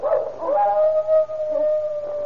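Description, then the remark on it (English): A dog out on a back porch lets out one long, sustained howl that holds a steady, mournful pitch for a couple of seconds, fairly loud and alone with no voices. “The howling's coming from around and back somewhere.”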